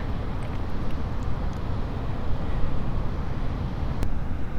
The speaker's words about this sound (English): I'm high above the beach at Penhill Sands. In the distance, the waves are crashing against the cliff.